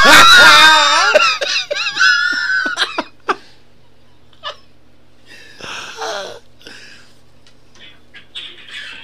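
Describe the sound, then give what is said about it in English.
A cat attacks a man, who screams: loud, wavering, high-pitched yowls and shrieks, then scattered thumps, a raspy outburst and fainter cries trailing off. “This isn't even better one of a dude getting attacked by a cat.”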